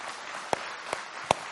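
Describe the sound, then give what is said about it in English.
A few scattered, sharp hand claps from a crowd, three distinct snaps spaced unevenly over a soft murmur of background noise, with no sustained applause building up. “You can clap and I'll tell you what it means.”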